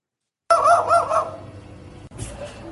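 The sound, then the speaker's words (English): A magpie adopted by a staffy mimics a dog's bark: a loud, raspy run of quick, bark-like calls, then a brief pause and a shorter, softer rasping call. No one speaks. “This is Magpie Bird barking like a dog after being adopted by a staffy.”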